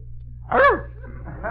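A single short bark from Snookums the dog comes through a thin, tinny telephone line, backed by a steady low electrical hum, with a faint muffled sound trailing after.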